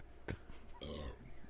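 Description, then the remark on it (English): A short guttural burst, then a longer, low, rumbling burp into a microphone lasting about half a second, with no talking around it. “Please stop burping into the microphone.”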